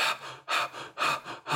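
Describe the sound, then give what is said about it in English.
Rapid, panicked gasping breaths made deliberately as an unhealthy way of breathing that induces anxiety: about four sharp, loud inhalations and exhalations in quick succession, each a rough, airy rush with no speech. “And if anyone wants to do that, you can start breathing in this very unhealthy way right now.”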